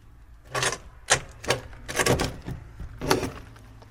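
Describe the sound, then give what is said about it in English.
An old cottage door, left open for 30 years, is pushed partly shut in several short, uneven creaking and scraping bursts, with no one speaking. “Now, this door has been open for 30 years, so I don't think we should close it fully, but maybe we should just see if it's possible to close it, just to be sure to rule that one out.”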